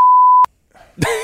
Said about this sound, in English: put a beep over